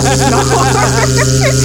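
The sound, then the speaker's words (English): A voice imitates an electrical short: a loud, steady, low buzzing hum with warbling, sputtering voiced wobbles riding over it for almost two seconds. “No, that's just the sound of the electrical short going.”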